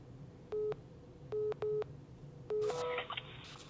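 Telephone tones on an outgoing call to a man: four short, steady electronic beeps in an uneven pattern, followed by a brief burst of crackly line noise as the call seems to connect. No one speaks.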